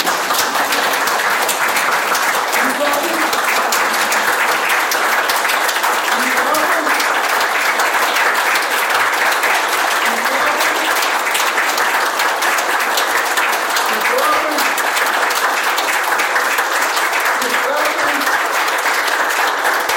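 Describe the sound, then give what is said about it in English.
A crowd applauds steadily for the whole stretch after being asked to raise their hands and clap as an affirmation exercise. It is a dense, loud wash of many hands clapping at once, with faint voices and a few scattered shouts mixed into the din. “people are clapping like that”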